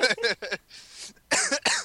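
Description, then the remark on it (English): A fairly loud burst of coughing: three quick harsh coughs, a brief breathy pause, then two more forceful coughs, with no talking around them. “Sorry, I keep coughing and keep meaning to mute myself.”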